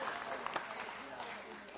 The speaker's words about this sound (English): This would be a good time for spontaneous applause. Isn't it? Yeah.